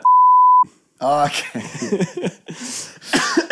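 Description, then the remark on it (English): A loud, steady, high-pitched censor bleep covering spoken names lasts about half a second, then cuts off abruptly; after a brief pause, voices resume talking and laughing. “Say their names, because I want to know who you're talking about. I'll beep it.”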